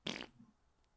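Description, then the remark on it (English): A voice imitates a short, loud, cartoonish fart: a quick, spluttering burst that tapers into a low, fading rumble before falling quiet. “It was a big fart. It wasn't big, but the sound was like cartoon.”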